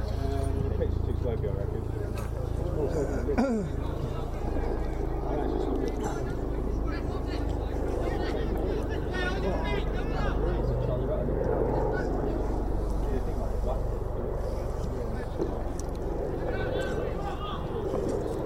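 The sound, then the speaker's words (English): A helicopter passes overhead during a football match at Taunton Town in Taunton, its low, steady rotor rumble filling the whole stretch, with indistinct voices and outdoor crowd ambience murmuring underneath. “Sounds like there's a helicopter above. That's probably a helicopter going into Musgrove Park Hospital.”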